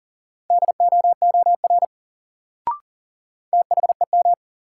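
Fast Morse code tones at about 40 words per minute from a new-word drill sending sets of two words: rapid bursts of a steady mid-pitched beep in quick dits and dahs, two groups separated by a pause with a brief click between.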